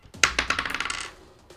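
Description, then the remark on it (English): A die clatters across a hard tabletop, a sharp first hit followed by a quick run of rattling bounces that speed up and fade out within about a second, with no talking. “Just roll the die.”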